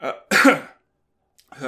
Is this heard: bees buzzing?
no